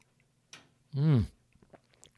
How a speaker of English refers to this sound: Let me take a quick sip of tea here, folks.